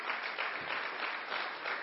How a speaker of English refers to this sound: Good clap for that.